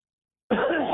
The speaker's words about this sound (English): That's a nice cough